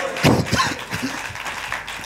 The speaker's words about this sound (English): Clap your hands and shout glory to God.